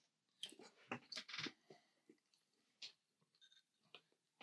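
Loud chewing of a giant piece of jerky: a run of irregular, moist, crackly bites and mouth sounds with short pauses between them. No one speaks.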